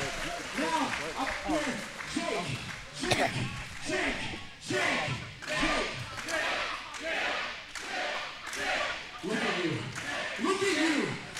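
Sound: audience clapping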